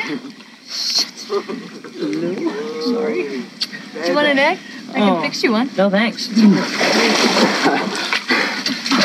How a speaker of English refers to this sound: Oh, my God. Cannon ball! Whoa! Hey!